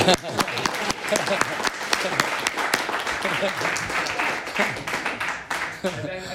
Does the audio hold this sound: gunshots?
no